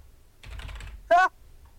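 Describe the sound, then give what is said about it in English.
About half a second of quick, irregular clicking on a computer keyboard, moderately loud, followed by a brief, sharp voiced exclamation. “Ha! Erratic typing.”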